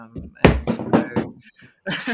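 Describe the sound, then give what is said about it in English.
A voice imitates someone tumbling off a chair: a loud thud followed by a quick series of bumping, clattering bursts, then a brief pause and one last scrape. “That's sound effects for me being knocked off my chair.”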